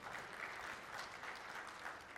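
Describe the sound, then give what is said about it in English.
An audience claps steadily, a dense, continuous patter of many hands with no pauses, holding at a moderate, even level throughout. “Now you can clap.”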